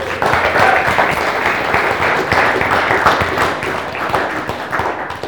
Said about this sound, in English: Yeah, give God a clap, why not?